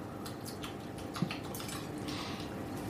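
Soft, wet slurping sips of tofu from an espresso cup, a few squishy bursts with a faint ceramic clink partway through, all over a steady hiss of background noise and no talking.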